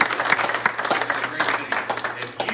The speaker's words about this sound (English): So give a round of applause for what happened.